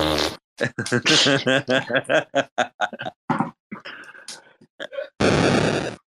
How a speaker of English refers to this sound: But yeah, there's like about 20 different sound clips here. Oh my goodness. That's funny. Oh, they even got a fart one, though.